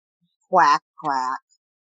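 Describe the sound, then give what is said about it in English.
A person voices two nasal, quack-like calls in quick succession, imitating a duck; the calls are clear, separated by a brief pause, with silence around them. “You're going to quack a little differently because that's just not how you were built.”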